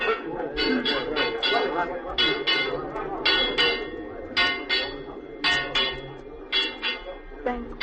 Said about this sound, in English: Awake! Awake! Ring the alarm bell, murder and treason!